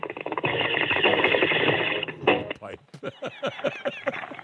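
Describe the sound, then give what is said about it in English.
A water bong bubbles in a dense, rapid gurgle for about two seconds, then breaks into choppier, rhythmic bursts as voices come in over it. “That was when we had the good water bong sound.”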